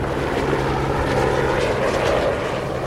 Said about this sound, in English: Maybe that helicopter scared them all away. Classic. Maybe that helicopter is dropping someone from 150 feet in the air.